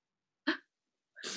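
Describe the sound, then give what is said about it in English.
A single sneeze: a short voiced catch of breath, a brief pause, then a sharp, hissing burst of air that trails off, with no talking. “I'm sneezing.”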